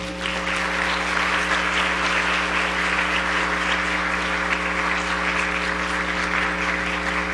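A crowd applauds steadily, a dense wash of many hands clapping at a constant loud level for several seconds, with a low steady hum running underneath and no speech.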